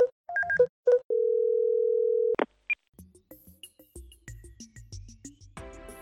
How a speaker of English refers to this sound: So let's give him a ring. You know what? I'd like to use my... that space phone from the film 2001 A Space Odyssey. The guy makes a video call.